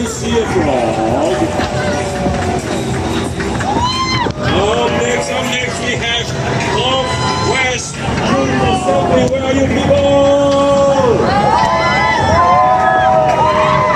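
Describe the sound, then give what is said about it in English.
The Northwest District team's crowd cheers and shouts loudly for the whole stretch, many overlapping voices rising and falling in whoops over a steady roar, with no break in the noise. “Yes, the crowd! Woohoo!”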